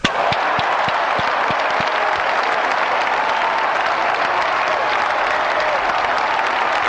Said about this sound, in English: Didn't you catch the parentheses in the script? That's where it says, cue applause. Oh, applause. I'll find that.